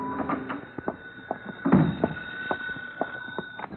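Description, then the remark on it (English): A key rattles and clicks in a lock, then an apartment door thumps open at 10 at night with a solid knock and a few more scattered clicks, all without any talking. “My phone was ringing when I unlocked the door of my apartment at 10 that night.”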